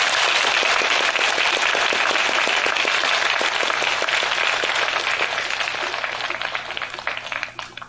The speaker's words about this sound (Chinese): 今天我们市长呢特别到会场，我们请他来跟我们致辞，请大家有热烈的掌声。